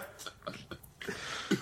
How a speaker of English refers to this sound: I mean, that was my roommate belching from four rooms away.